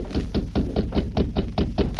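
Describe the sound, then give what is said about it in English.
Rapid, steady knocking on a wooden door, about ten sharp raps in quick succession, fairly loud, with no voices. “Who's there? Open the door, Clarabelle. It's the law.”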